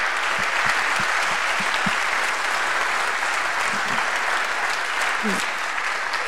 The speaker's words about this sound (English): Would you please stand up, and would you please applaud these awesome couples?